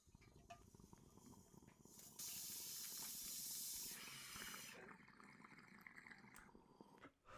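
A hit from a wax dab rig: steady water bubbling throughout, with a loud sizzling hiss surging for about two seconds in the middle before fading back to gurgles. No talking.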